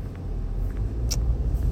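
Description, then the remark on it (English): Steady low road rumble inside a moving car, a continuous deep drone with faint higher hiss and a brief soft click partway through, no voices. “You see, when we started this show, it started just like this, recording podcast episodes in the car into my phone and sharing a message of hope and inspiration and pure joy.”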